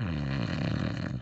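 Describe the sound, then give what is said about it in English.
A person mimics a snore with a Russian accent, a single drawn-out, rasping, buzzy vocal rumble lasting just over a second, steady in loudness, with no other speech around it. “Oh, well, you can probably snore with a Russian accent, can you?”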